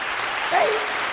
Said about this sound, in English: So let's try that again. Let's give God a hand clap of praise.